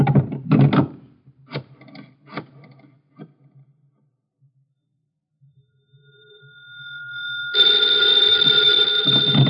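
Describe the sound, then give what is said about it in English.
A few sharp knocks and clatters, a quiet pause, then a telephone bell swells in and rings loudly and continuously until the end. “Hand me the phone.”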